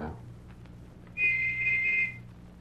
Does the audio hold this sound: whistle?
yes